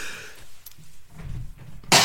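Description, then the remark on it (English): A single harsh cough bursts out at the very end, preceded by low rumbling breath and throaty sounds with no talking. “No one coughs like you, bro.”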